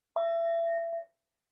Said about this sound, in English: there are ways that I remind myself to go out in the street with my whistle or whatever I do as a meditation teacher. Instead of a whistle, I have my bell.